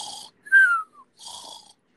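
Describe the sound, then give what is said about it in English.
A voice imitates loud snoring as a sound effect for Mr. Noisy snoring in his house on top of a hill: a raspy inhale, a whistling tone sliding downward, then another rough breathy snort, all over in about two seconds. “Anyway, he was snoring.”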